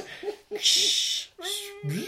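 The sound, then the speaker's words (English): A person imitates a frightened cat: a few short strained yowls, a long sharp hiss, then a drawn-out wail that rises in pitch at the end. “It's not like a cat. Like a cat that's like being shaved.”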